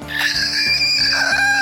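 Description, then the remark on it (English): A person lets out a sustained, shrill, wavering inward scream imitating a female sloth's mating call, loud, holding steady for over a second with a bright, strained tone. “So, you can do the mating call of a female sloth.”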